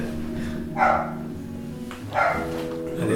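A male dog barks twice at a slow, even pace, with a third bark starting as it ends, over a steady low humming background.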